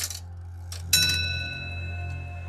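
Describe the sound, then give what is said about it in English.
A clock bell strikes midnight with a bright, ringing tone that lingers and slowly fades, after a couple of soft mechanical clicks, over a low steady hum. “And in that moment, the clock struck midnight.”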